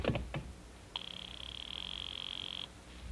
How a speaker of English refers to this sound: I'll just ring him on the house phone.